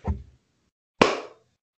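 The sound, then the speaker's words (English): Two sharp hand claps about a second apart, made to sync audio for editing a recording, each a bright, punchy smack with a short ringing tail, followed by silence. No one speaks. “Because now the audio is all fucked again, and it's going to be hard for me to figure out which clap was legit.”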